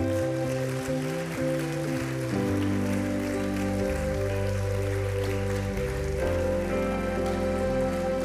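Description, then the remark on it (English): Steady, dense applause from a church audience hisses and crackles continuously as children from Children's Church come into the room, layered over loud sustained music with shifting low pitched chords. “Pray for the next generation, and I want you to applaud as these kids come in, because these are our leaders for tomorrow.”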